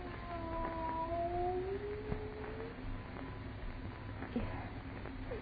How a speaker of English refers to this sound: It is a cat. Not a cat. Look at the size of it. Tiger.